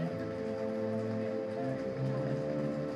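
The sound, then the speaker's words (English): Steady rain falls in the UK without a break, a continuous dense patter on a hard surface at moderate loudness, with no voices present. “Classic UK weather.”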